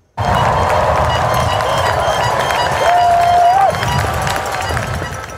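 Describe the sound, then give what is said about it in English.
A large anti-racism protest crowd in front of the Manitoba Legislative Building in Winnipeg chants and shouts against racism and police brutality in a loud, steady roar of many voices, with a brief high whistle rising out of the noise midway. “Protesters chanting and decrying racism and police brutality.”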